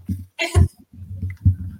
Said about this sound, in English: Bless you.